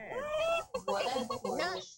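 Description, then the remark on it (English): A man's voice imitates a chicken, giving three strained, warbling clucks in quick succession, loud, with brief gaps between them and no ordinary talk. “He just started plucking like a chicken.”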